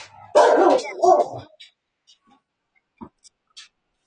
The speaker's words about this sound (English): All right, lady, you got to go on somewhere. Go somewhere. You're not going to bark during the whole podcast. Go lay down. Go.